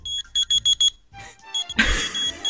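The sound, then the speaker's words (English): A rapid run of short, high-pitched electronic beeps spelling SOS in Morse code, followed by a pause and then a burst of rustling, clattering noise. “What's that Morse code for?”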